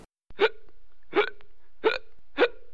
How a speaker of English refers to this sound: Hiccup is a sound of the involuntary contraction of your diaphragm. It's this kind of weird thing we get sometimes where we have this involuntary sound of the hiccup. It's hard to stop.